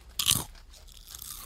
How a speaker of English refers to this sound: You're crunching. Yeah, crunch. What'd you get? You got Doritos. These are crisper sounding.